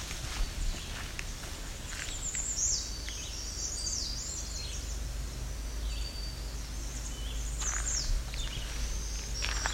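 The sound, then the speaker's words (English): High, thin black-throated green warbler songs, buzzy and repeated, come from several spots over a steady low outdoor rumble and occasional footsteps. “As you can hear, this place is loaded with black-throated green warblers.”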